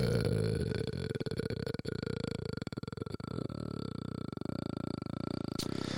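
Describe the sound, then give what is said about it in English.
A long, drawn-out burp, low and rumbling with a throaty, gurgling texture, rising and wavering for several seconds with no talking. “Did you hear my burps, bro?”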